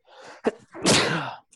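A single loud sneeze: a quick breathy intake, a sharp catch, then a forceful burst of air that trails off, with no talking.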